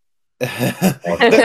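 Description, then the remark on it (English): A loud throat clearing that breaks into a short cough, three rough bursts in quick succession after a moment of silence. “And second half cough.”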